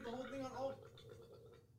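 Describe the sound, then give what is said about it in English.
A strained, croaking gag from someone's throat after drinking a whole shot, a rough voiced choke that breaks into raspy, sputtering coughs, fairly loud for under two seconds. “Why it sound like someone was in your throat trying to get out?”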